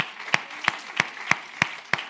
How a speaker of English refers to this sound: Let's clap our hands to the Lord and thank him.